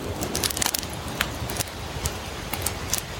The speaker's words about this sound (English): you can just listen to the sound of the fire crackling.